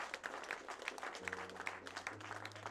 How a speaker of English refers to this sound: You want to clap for Jesus? You better do.